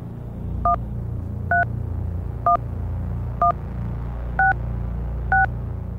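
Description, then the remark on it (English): Six short, dual-pitched test tones played over a phone line beep at a steady, roughly one-second rhythm, each brief and clear above a constant low hum, with no one speaking. “My phone seems to be filtering out the tone.”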